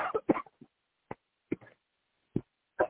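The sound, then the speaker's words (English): A flurry of short coughs, followed by several separate single coughs spaced out over the next couple of seconds, with no talking. “Yeah, I had a little cough there.”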